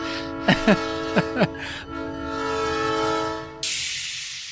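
A freight train's horn blares in a long, steady chord, with a few sharp squealing chirps near the start and a sudden rush of hissing noise at the end.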